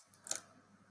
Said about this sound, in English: I'm typing.